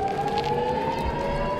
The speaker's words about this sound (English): Sirens warning of incoming rockets interrupted the event near Tel Aviv.